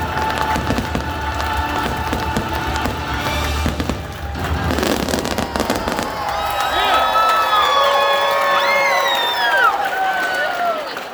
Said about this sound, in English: It's just the idea that people are gathering around, cheering and screaming and happiness is just something we all need to experience these days.